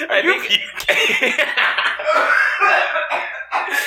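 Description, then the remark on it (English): A man's strained cough that seems to merge with a hiccup or burp, followed by several seconds of sputtering, choking vocal sounds with some laughter-like breaths. “I think he went to cough and hiccup or cough and burp at the same time or something where he was inhaling and exhaling at the”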